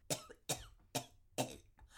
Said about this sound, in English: She just started coughing out of nowhere.